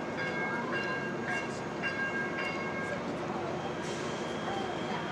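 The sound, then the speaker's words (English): A subway train rumbles into the Chinatown station with a steady low roar, high metallic squeals and tonal whines rising over it, continuous throughout. “So I'm on my way right now, waiting for the Chinatown subway. Oh, looks like they're pulling up now.”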